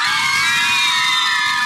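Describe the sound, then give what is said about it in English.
A loud live audience cheers and screams together, a dense wall of high-pitched shrieks and whoops that stays steady throughout the short burst. “I like screaming.”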